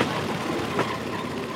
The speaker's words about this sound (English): So the enterprising locals made their own locomotives, also known as a creaking wooden platform powered by a rubber belt and an outboard motor. The tracks are barely aligned, and the bridges aren't exactly up to code.